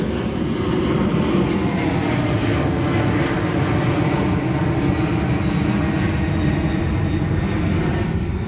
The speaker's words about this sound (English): This is group stalking by planes, hovering where it is that I am at.